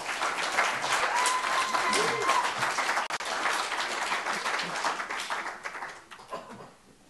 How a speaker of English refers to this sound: So if you guys wanna come up and share with us at this time, that would be great. You guys can clap very loud for them.